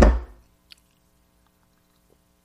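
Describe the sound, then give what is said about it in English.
A sweating, wet glass of water is set down on a coaster with a single dull, low clunk that quickly fades, followed by a couple of faint tiny clicks in the quiet. “Somebody asked me, what's that noise when you get the clunking on thing? Well, I've got the glass of water here, you know, and I've got a coaster because my wife insists on coasters.”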